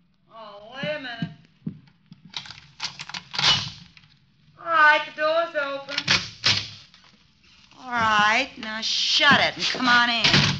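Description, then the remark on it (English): A hotel room door, room 306, is opened with a few sharp clicks and knocks of the latch and handle while people talk around it. “Right, now shut it and come on in.”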